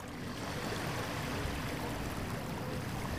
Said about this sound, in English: Just a few miles outside of Portland, Oregon, there's a long stretch of beach that faces the Columbia River, Collins Beach, on Savi Island. The thing that's special about Collins Beach, in addition to the sun and the sand and the small river waves